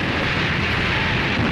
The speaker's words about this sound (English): Well, according to the testimony of a German soldier, a bank in the Dutch city of Arnhem was hit by a bomb in August 1944.